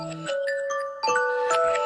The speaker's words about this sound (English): Oh, that was just an alarm that make sure I call my internet company